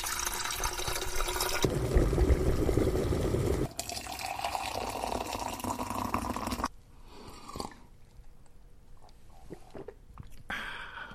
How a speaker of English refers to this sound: There is only one way to find out, so we will boil our water, steep, and hope for the best as we dive into the organic Honeybush Superior herbal tea from South Africa. Let's put the kettle on then.